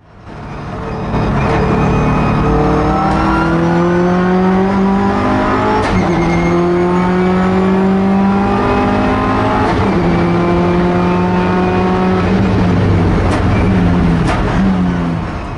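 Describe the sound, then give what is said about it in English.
A loud real-life race car engine, the same race car featured in Gran Turismo Sport, screams as it accelerates, climbing in pitch through several gear shifts, each upshift dropping the tone before it rises again. No talking. “Now here is that exact same race car in real life.”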